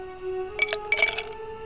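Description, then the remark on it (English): Two martini glasses holding dry martinis clink together at a buffet in a suite, in two short bursts of bright, ringing chimes, a quick tap followed by a busier cluster of jingling contacts, over a steady low hum with no voices. “Camilla dons a robe and heads towards a buffet with two barely touched dry martinis.”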